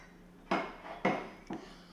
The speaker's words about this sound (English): rooting around in his dishwasher, in his cupboards. Looking for a prop.